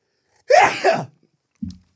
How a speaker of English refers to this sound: Bless you.